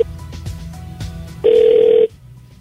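A single loud burst of phone ringback tone on an outgoing call placed by radio station Mix 94.7, a steady electronic buzz lasting about half a second, heard through the line over a low background hum before cutting off. No one speaks.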